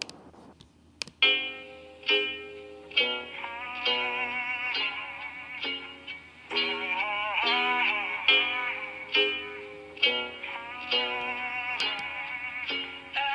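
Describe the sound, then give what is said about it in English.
A man sings a drawling country rap melody in phrases over a sampled slow, sparse instrumental track with a low bass drone and occasional sharp clicks, the vocal loud. “that's …, all right. Singing over … …”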